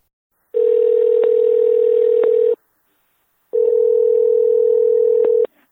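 A telephone tone sounds in two long, steady, loud bursts separated by a pause, with a few faint clicks like dialing, as a phone call is placed to a guest; no voices are heard.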